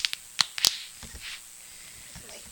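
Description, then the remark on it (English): A twist-off bottle cap cracks open: a few sharp, bright clicks in quick succession, then softer crinkly scraping and rustling as the cap is turned, fairly quiet overall. “Unless there's a cork under there, now I'm scared. Nope. It's a twist off.”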